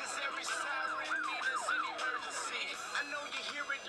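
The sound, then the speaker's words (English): An emergency vehicle siren yelps in quick, repeated rising-and-falling sweeps, fairly loud and steady throughout, over a busy wash of street noise. “You hear the siren, so come to Christ urgently.”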